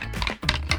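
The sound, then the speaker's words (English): A quick burst of wooden sticks clattering together, standing for the second little pig's house made of sticks in a Three Little Pigs story, a few dry, sharp knocks with a brief pause in the middle, fairly loud and with no voices. “The wolf went to the second house, which was made of sticks, which sounds like this.”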